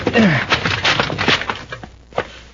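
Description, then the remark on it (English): A rickety, locked wooden shed door is kicked in with a loud crash, followed by a series of sharp splintering cracks and clatters that taper off over a couple of seconds, with a brief vocal grunt at the start. “It's a rickety-looking door. One kick ought to break it.”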